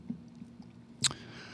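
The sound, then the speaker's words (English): A man spits out a mouthful of water in a single wet, spraying spurt, sudden, with a short hissy trail after it over a quiet background hum. “He spit out the water.”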